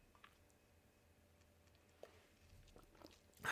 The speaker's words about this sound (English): As always, there's our needed second segment sip, and we're ready to keep things going.